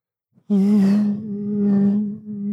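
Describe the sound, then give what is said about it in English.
A voice imitates bees buzzing: a loud, steady, low-pitched drone that starts abruptly after a brief click and holds for about two seconds, wavering slightly in loudness. “They're bees.”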